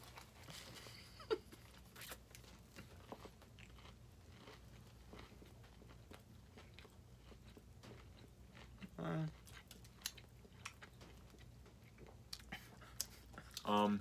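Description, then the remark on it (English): Crisp crunching first bites and chewing of a crispy chicken sandwich, a steady run of sharp crackly clicks over a low hum, with a couple of brief louder thumps. “So yeah, we're just going to do first bites, talk about it a little bit, but yeah, nothing too crazy.”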